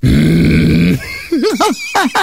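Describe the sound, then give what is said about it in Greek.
A person imitates an angry cow with a loud, low, drawn-out growling moo lasting about a second, followed by several short, wavering vocal yelps and grunts. “Ωραία, πώς θα έκανε η αγελάδα αν είχε νεύρα.”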